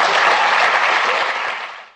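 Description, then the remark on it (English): A short burst of applause, a dense, steady patter of many hands clapping that holds for under two seconds, then tapers off quickly. No one speaks over it. “I mean, that was some pity applause, was it not”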